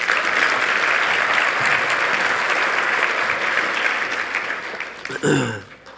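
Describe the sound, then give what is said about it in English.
An audience applauds steadily for about five seconds, a dense, even patter of many hands clapping that fades out, followed by a brief voiced sound at the end. “Hey, give them a round of applause.”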